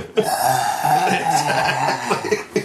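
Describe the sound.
A person makes a sustained, raspy, breathy roar with their voice, imitating a monster's atomic fire breath blast while pretending to destroy a building, with a few sharp bursts near the start and end over about three seconds.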